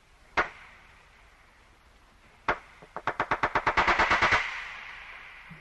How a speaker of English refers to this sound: And those are just the sounds they make above the water. You will not believe what walruses sound like underwater.